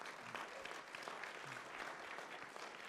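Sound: audience applauding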